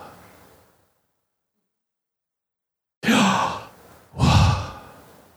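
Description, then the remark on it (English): After a stretch of silence, a person breathes out two loud, airy exhales. The breaths shape the two-syllable Hebrew divine name Yahweh with almost no voiced tone. “What does that sound like to you? What is that? Breathing.”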